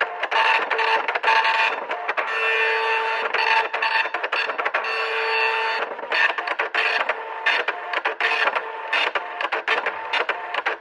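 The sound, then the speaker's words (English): A dot matrix printer chatters loudly and steadily, a continuous rasping, buzzing line of printing that breaks into choppier, stuttering bursts toward the end. No voices are heard. “If you would like to meditate to the peaceful sound of a dot matrix printer, stay on the line.”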